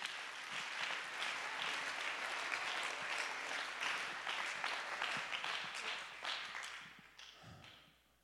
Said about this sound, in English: Clap your hands and give God the praise right now.